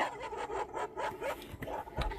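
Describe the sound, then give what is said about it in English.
A dog barks repeatedly in quick, uneven bursts, moderately loud, with no talking over it. “Dog. Yeah, with, he's being really protective.”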